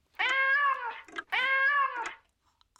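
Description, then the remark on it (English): Two drawn-out, identical meows from a novelty cat clock marking 8 o'clock, in quick succession, loud, each with a bright harmonic tone and a short electronic-sounding tail, followed by a brief pause. “Thank you, my little kitty clock.”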